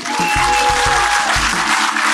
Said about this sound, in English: I just want to start by asking you to give a round of applause to my guest,